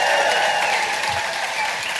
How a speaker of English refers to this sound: So I'd just like everyone to give my tour manager, Beck, an amazing round of applause for getting us here.